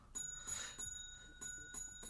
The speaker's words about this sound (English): Ding dong, ding dong dong.